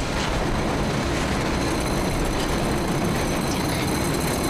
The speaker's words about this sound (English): Sound of mechanical rustling and shuddering and dust falling from the ceiling from the center of the house.